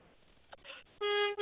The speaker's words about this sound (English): I want one more double honk.